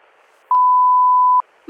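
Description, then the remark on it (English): A loud, steady electronic telephone off-hook warning tone from a phone left off the hook sounds once for just under a second, a flat pure pitch, set against faint line hiss before and after, with a brief rustle at the end. “I was just walking down the hall and the phone was off the hook.”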